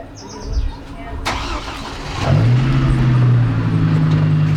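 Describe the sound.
A car engine turns over and starts midway, then settles into a steady rumbling idle, with a brief bird chirp early and faint voices outdoors, as a small caravan of cars carrying about 20 people sets off from rural Redding, California, on a mild June day in 2018.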